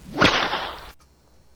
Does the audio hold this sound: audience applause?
no